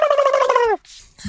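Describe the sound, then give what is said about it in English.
A person imitates a wild turkey gobble: a loud, rapid, warbling rattle lasting under a second that drops in pitch at the end, followed by a brief breathy pause. “I think that was a pretty good gobble myself.”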